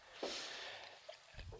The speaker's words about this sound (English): And you couldn't see the big sniff that he did. He did a huge huge sniff.